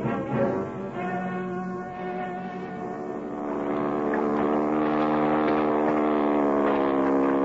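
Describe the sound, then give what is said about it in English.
A rented motorboat's engine drones steadily across the water at night on the way to Craven's Point, a continuous harmonic hum that grows a little louder partway through and holds. No one speaks. “Can we get a boat and go over to Craven's Point?”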